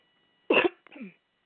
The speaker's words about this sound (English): Sorry, I just coughed right in your ear.